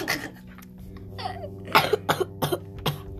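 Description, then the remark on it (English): A person at home with a lingering little cough, not coronavirus, coughs four times in quick succession, fairly loud, after a brief raspy throat sound; faint steady hum underneath and no talking. “Still battling a little cough here”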